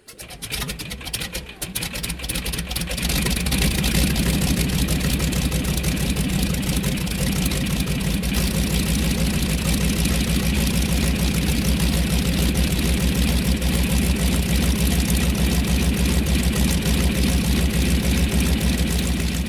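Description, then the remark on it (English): An aircraft engine starts up, rising over a couple of seconds into a loud, steady roar with a deep low rumble and broad hiss that holds without letup. No one speaks. “So I've captured all this amazing this plane engine.”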